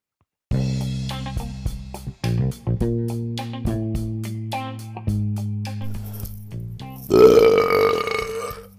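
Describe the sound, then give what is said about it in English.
A long, loud, drawn-out burp rumbles for several seconds with deep croaking pulses, ending in a harsher, raspier burst near the finish. No talking accompanies it. “Burp that Maury away”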